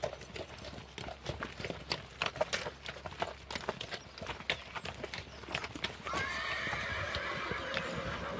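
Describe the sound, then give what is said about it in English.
Hooves of working farm horses clip-clop in a steady rhythm on a hard surface, then a horse lets out a long, high whinny near the end while the hoofbeats keep going. “a teamster from the North Island, a good friend of ours, and he comes down for usually a fortnight each spring and works the horses.”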